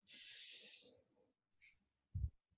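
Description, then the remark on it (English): A person demonstrates slow, steady breathing through the nose: one long, airy hiss of breath, then a brief softer sniff and a short low puff of air. “You know, they're not breathing through their nose like they're running a long distance race, right?”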